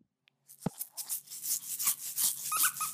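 A baby of a couple of months old shakes her rattle in continuous, uneven bursts of bright clattering, with a squeaky toy giving a few short high squeaks near the end; no one speaks.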